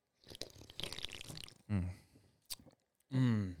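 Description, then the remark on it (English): A noisy slurp from a can of Red Bull energy drink lasts about a second, then a couple of short voiced exclamations follow, like a satisfied swallow and sigh. “Let's crack one open. Cheers, man. Cheers to season 4. Season 4 of Testosterone Baby. Slurp.”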